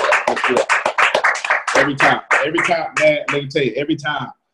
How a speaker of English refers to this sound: Can we just clap for this soldier in the United States Army?